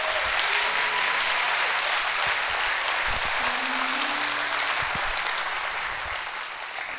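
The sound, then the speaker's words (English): An audience claps hands above their heads together in a sustained burst of applause, a dense wash of many hands filling the room for several seconds before easing slightly near the end, with faint voices underneath. “Everybody that is, clap your hands above your head and say amen for that.”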